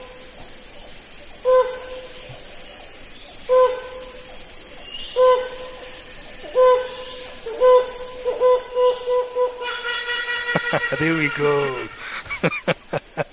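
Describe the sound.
A large fig-eating rainforest bird of Southeast Asia gives loud, nasal honking calls, spaced at first, then quickening into a frenzied, rising burst of notes before stopping. A person speaks briefly.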